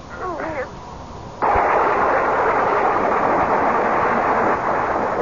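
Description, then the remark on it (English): A brief voice, then a sudden violent crack of lightning from a storm that bursts into loud, continuous roaring thunder, holding steady and heavy for several seconds. “I was literally galvanized awake by a bolt of lightning which must have hit the tree.”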